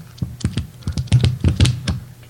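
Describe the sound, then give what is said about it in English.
Pages of a big physical book being flipped quickly: a rapid, uneven run of about a dozen crisp, papery flicks over two seconds, with no one speaking. “That's pages turning.”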